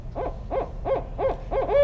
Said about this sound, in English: There's a barred owl right there. Just flew in. Did you see that?